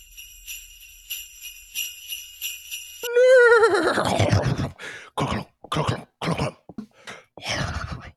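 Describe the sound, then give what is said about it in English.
Bells jingle briefly, then a voice playing a Christmas horse character gives a whinnying horse imitation followed by a series of short vocal clomps mimicking hooves plodding toward the microphone, about five uneven beats. “I'm picking up my feet and clomping on over here to the microphone.”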